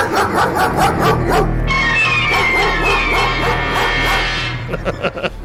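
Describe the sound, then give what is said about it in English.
Several chained guard dogs bark furiously and nonstop at a would-be thief, overlapping yips and deep woofs in a dense, aggressive frenzy that stays loud throughout, with a few separate barks trailing off at the end. “the chained guard dogs erupt with vicious frenzied barking at Smith”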